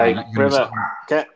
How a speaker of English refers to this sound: Get a muzzle on that guard dog